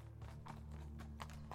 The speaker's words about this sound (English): But then with a start he was fully awake, hearing a horse's hooves ring on the stones outside.